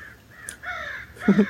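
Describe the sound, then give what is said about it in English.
Several crows caw harshly in a short outdoor burst on the shore of a big lake in the morning, a couple of rasping calls overlapping, the last one loudest, with no voices present. “Except for the crows, of course. The crows are being the crows.”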